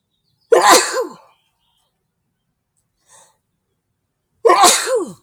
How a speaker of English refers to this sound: I'm gonna sneeze again.